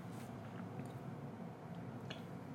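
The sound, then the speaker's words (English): Soft sipping of water with a few faint wet slurps and a small swallow, spread across a quiet moment with no talking. “I just had a sip of my water.”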